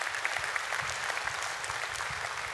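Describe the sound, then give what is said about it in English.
A church audience claps steadily to welcome a new member, a dense patter of many hands at an even, moderate loudness that holds for a few seconds without voices rising above it. “come on, you can shake, you can clap, not shake, but clap.”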